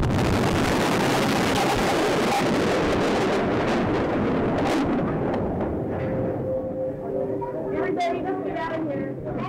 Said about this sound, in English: 168 people, including 19 children, were killed in the explosion, and 500 more were injured.